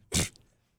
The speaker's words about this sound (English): Bless me. Bless you.